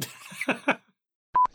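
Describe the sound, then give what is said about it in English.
A person coughs, a couple of short, harsh bursts, then after a brief silence two loud electronic tones beep in quick succession. “That was a very nice timed cough.”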